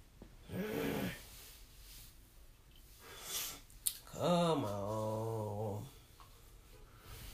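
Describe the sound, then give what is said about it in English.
A person lets out a long, voiced yawn, the pitch sliding down and then holding steady before trailing off, after a shorter breathy vocal sound earlier. “You think me yawning has come across on the audio?”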